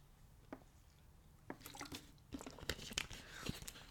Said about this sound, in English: Let's take some more water. Take a water break.